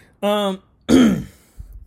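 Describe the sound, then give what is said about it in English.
A person clears their throat twice, a buzzy harmonic rasp followed by a rougher, gravelly one, then a faint low thump trails off. “I had to drink water, clear my throat.”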